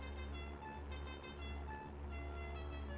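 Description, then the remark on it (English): A loud vehicle horn from a flying taco truck dive-bombing over a longhorn ranch blares in one long, steady, unbroken tone over a low engine rumble, continuous with only slight wavering. “Good Lord, it's a flying taco truck. It's dive bombing.”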